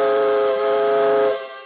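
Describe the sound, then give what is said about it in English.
A steam train's whistle sounds one long, loud, steady blast with a rich, reedy tone as the train departs, holding its pitch before tailing off quickly at the end. No one speaks. “The steam pressure is up, and we're off on the second leg of our swift journey across America on this peace-tide Christmas Eve.”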